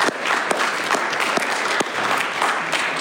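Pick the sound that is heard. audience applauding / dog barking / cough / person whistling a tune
audience applauding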